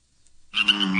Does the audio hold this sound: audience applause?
no